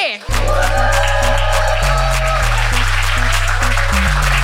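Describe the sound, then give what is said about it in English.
A stand-up comedy audience bursts into loud, sustained clapping, whooping and cheering right from the start as a comedian is welcomed to the stage, over booming walk-on music with a heavy, stepping bass line. “So please whoop and cheer and clap and stomp as we welcome to the stage,”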